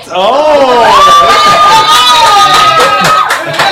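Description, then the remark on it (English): A raucous audience cheers loudly, many voices whooping and yelling together in a sustained, high-pitched roar that holds steady for a few seconds before tapering slightly at the end. “A new audience have turned up. A very raucous.”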